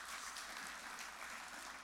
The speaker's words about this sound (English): And that round of applause is to you and to anyone who gave and played a part in this, because it made a difference.